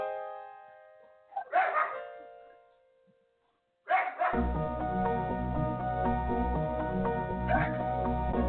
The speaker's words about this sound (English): If you heard a dog barking in the back, that's my dog, Gypsy, and she says hello this morning.